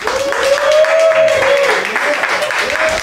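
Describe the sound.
A Fight Club crowd applauds steadily for about three seconds for the two competitors, a dense wash of clapping with cheering voices and a sustained whoop riding over it, loud throughout.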